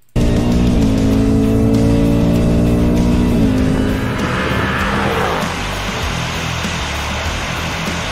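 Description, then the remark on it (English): Sports cars, a Dark Horse and a GT, roar as they accelerate hard in a 60 roll race, engine pitch climbing steadily with a couple of brief dips at gear changes. The sound stays loud and continuous, with no talking. “Dark Horse is pulling out a little bit right there.”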